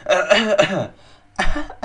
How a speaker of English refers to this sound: Like, oh my god, you got a little something stuck in your throat. Like, oh my god.